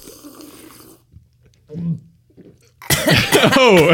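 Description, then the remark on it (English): After a short, quiet pause, someone breaks into a loud, harsh fit of coughing, several rough coughs in quick succession, after choking on water drunk from a mug. “I assure you that the coughing was due to the water, not to any defect in the mug.”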